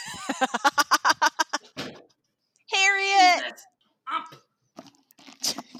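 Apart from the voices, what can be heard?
cat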